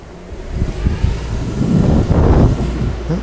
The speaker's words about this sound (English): So the car is now pulling away.